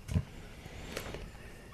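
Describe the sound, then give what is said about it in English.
A single muffled, faint dog bark from outside, followed by quiet background hum with no voices. “What was that? A dog. Oh, outside.”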